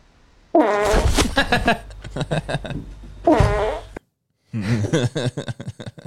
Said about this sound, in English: Do you remember this cat? I do remember this cat. Fart cat. I love fart cat.